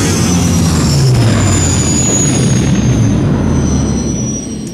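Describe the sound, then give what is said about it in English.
Giant spacecraft engines roar loudly and steadily, kicking up large clouds of dust: a deep rumbling wash overlaid with thin, high whining tones that hold for the whole stretch before easing slightly at the end. “The giant engines of the spacecraft begin to whine, kicking up large clouds of dust.”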